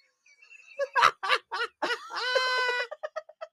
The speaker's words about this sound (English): And now it's like having a fucking conniption making weird bird or dolphin noises. Also, two very different noises.